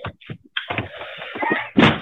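A man repeatedly rams a front door with his shoulder to force his way in, with heavy thuds and cracking, splintering noises. A loud impact near the end suggests it is giving way, and no one speaks.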